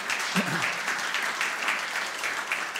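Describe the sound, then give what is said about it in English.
An audience claps steadily, a dense, even patter of many hands that holds at a constant level throughout, with a brief low murmur of voices near the start. “We can clap for that.”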